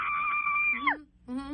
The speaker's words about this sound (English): Do you want to scream right. again? I'll let you scream again if you want.